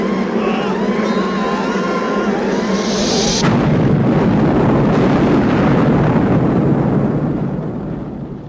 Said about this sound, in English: Entire base blows up. Yeah. I mean, sorry, not base, the nuclear power plant. Yeah, the nuclear power plant. That blows up because the bees have got in.